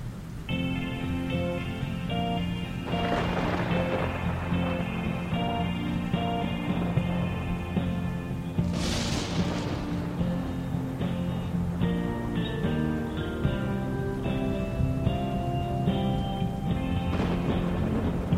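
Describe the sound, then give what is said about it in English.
Heavy rain pours steadily, starting to flood, while several bursts of thunder roll through, one louder crack near the middle, all layered over sustained tonal music with no voices. “Sunny and Cher sit down and lean up against one another, watching the rain fall for a moment.”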